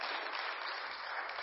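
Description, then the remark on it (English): A church audience claps together during a sermon, a dense, steady wash of many hands with no individual claps standing out. The applause holds at an even, moderately loud level throughout, with no voices heard. “Go ahead and clap.”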